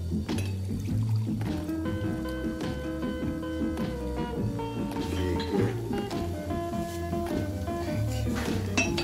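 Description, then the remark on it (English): Beer pours steadily into a glass for several seconds, a continuous gurgling fill with a faint clink, moderately loud, with quiet voices in the background. “You want me to pour it?”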